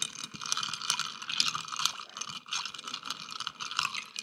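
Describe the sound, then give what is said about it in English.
Ice rattles and clinks steadily in a mixing glass as it is stirred for a cocktail made with Angostura and Fee Brothers Old Fashioned bitters, a continuous bright, rapid clatter with small swells in loudness and no voices. “Give it a good stir.”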